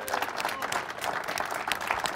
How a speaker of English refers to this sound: We are at the headquarters of Farm Bureau with a bunch of Farm Bureau members in the audience. Big round of applause.